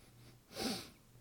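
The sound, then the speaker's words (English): A single short, breathy sniff of Elijah Craig Small Batch bourbon, 94 proof, in a glass, with quiet room tone before and after and no talking. “I feel like I'm sniffing like that little fucking wolf from, what is it?”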